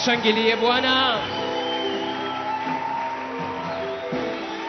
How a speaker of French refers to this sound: Acclamons très très fort le Seigneur.